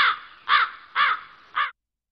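Four harsh, raspy crow caws in quick succession, evenly spaced about half a second apart, loud with no other sounds, then silence.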